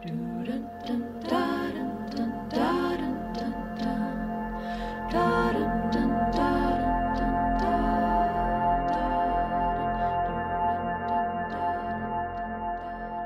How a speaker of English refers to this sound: The theme song that we just heard there coming out of that interview, do you love it as much as I do? Oh my gosh, I was listening to this on an airplane last weekend and I was singing it to myself. It has such a haunting quality to it. It really is.